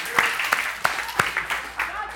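A short, sparse burst of audience applause: a handful of sharp, uneven claps over a soft, noisy crowd hiss, fairly quiet overall.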